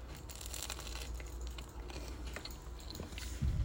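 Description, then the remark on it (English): A crunchy bite into a burger followed by steady chewing, with crisp crackling textures and soft squishing, loud with no talking. “Heard that crunch?”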